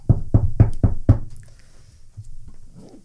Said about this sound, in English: I'll kind of take a bit of a breath and knock on his door.